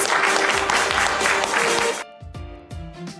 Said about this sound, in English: Can we give Anastasia a round of applause? Thank you.